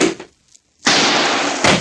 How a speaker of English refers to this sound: My knees bumped a chair.